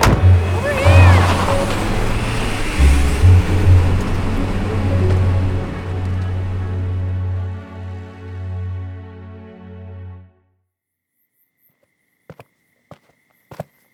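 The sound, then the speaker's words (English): A van engine rumbles and drones steadily as it drives off, the low hum fading out over about ten seconds into near silence, followed by a few faint, sharp clicks. “Get in the van. Go!”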